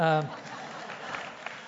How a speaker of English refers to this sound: Now you should be applauding.